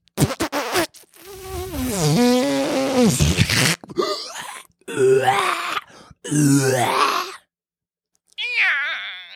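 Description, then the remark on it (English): A voice imitates a long, groaning fart: a few sputtering pops, then several drawn-out, wavering moans with short pauses between them, loud, ending in a higher whine. “Sounds like a mummy waking up out of my ass.”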